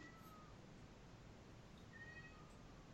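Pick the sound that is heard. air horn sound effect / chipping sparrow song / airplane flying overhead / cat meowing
cat meowing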